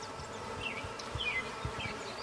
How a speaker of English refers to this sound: I don't really want to look for the queen. I assume she's there because there's a lot of bees, and that's a good sign.